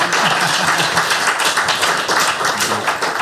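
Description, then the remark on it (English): Steady, dense applause from a crowd, many hands clapping at once in a continuous wash of sound, fairly loud and sustained throughout without any voices on top. “Oh, give them a round of applause, everybody.”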